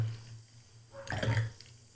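A short stream of liquid splashing, like someone urinating, rises for about half a second with a hissing, frothy texture, then trails off over a steady low hum.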